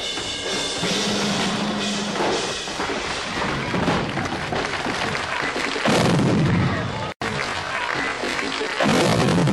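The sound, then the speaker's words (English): A loud explosion of cherry bombs, ten times the standard dose of gunpowder hidden in Keith Moon's drum kit on stage with a band, erupts into a sustained roar of rumbling, crackling noise with heavy booming low end, briefly cutting out near the end before the din resumes. “with 10 times the standard dose of gunpowder hidden in his drum kit”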